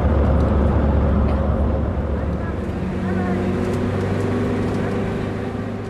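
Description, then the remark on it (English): A bus carrying passengers rumbles steadily along a road through towns and villages in Ethiopia, its deep engine drone and tonal hum loud and continuous, with road noise holding level throughout. “Another bus and another emotion.”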